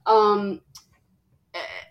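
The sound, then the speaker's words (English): A dog sneezes twice: a loud, nasal, honking burst, a tiny snort, then a shorter second sneeze after a pause. “our dog is sneezing and also snoring. Was snoring, is now sneezing.”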